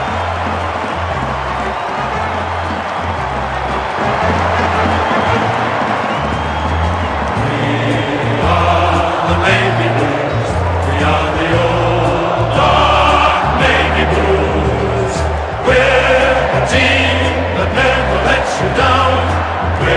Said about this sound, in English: It's a great sight when the Blues are up and about. The crowd are singing the song.